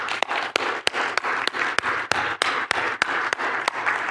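An audience applauds the band steadily, a dense wash of clapping punctuated by sharper, evenly spaced claps that beat out a quick rhythm, with no one speaking.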